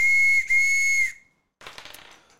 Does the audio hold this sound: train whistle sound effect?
yes